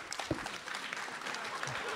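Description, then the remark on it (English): Steady audience applause for Tom Sharpling and his co-host of The Best Show on WFMU fills the whole two seconds, a dense wash of many hands clapping at an even, fairly loud level, with a brief vocal sound or cheer near the start. “That was a good amount of applause, but you guys are fucking comic geniuses on that show.”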